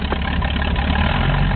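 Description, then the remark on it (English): A loud, steady engine drone from an approaching air circus airplane, a dense low rumble with a rough, churning texture that holds throughout, with no voices. “And just at that point, his speech was drowned out by the sound of an approaching airplane.”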